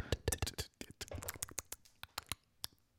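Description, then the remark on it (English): Rapid, irregular clicking of keys on an old computer keyboard, a dense flurry of sharp taps that thins into scattered, slower clacks toward the end, with no voices. “It sounds like there's a little bird eating on your computer. I have an old keyboard.”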